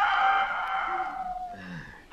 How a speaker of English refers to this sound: Oh, I could have slept if it hadn't been for that darn rooster.